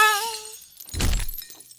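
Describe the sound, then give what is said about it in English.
Window glass shatters in a single loud crash: a bright ringing tone fades into a sudden burst of breaking glass, followed by tinkling shards settling briefly. “Can you at least throw me out the window like old times?”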